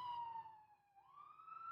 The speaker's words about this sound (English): That's an ambulance.